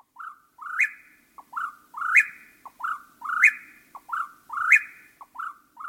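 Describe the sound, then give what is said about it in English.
An eastern whip-poor-will sings its loud, repeated three-part whistle, steady phrases rolling out about every second and a quarter, clear against a quiet nighttime background with no talking. “Once all the females have arrived for the season, the male chats go quiet at night, but not the whippoorwill.”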